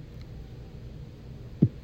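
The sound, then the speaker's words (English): A low droning hum fills the background before a deep, muffled heartbeat thump lands near the end, quickly followed by a second beat, a suspenseful heartbeat sound effect like the one on the game show Who Wants to Be a Millionaire. “And that the heartbeat thing.”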